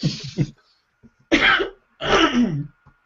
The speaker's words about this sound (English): Excuse me, my turn to have a coughing fit.